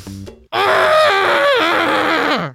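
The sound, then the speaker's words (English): A loud, sustained human scream bursts in after a brief low murmur, holding strong for about two seconds with a wavering, strained pitch before cutting off. “That was my scream.”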